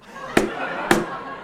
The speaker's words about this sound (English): Yeah, and that's no ordinary beer can, that's bent paddle. I went with the blonde because I thought it had a little more authoritative thump.